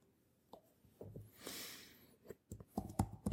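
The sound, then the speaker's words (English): Soft, irregular typing taps on a keyboard, scattered at first and then quicker and louder toward the end, with a short breathy swish partway through. Otherwise quiet. “So I'm going to do everything with the touchscreen except for typing.”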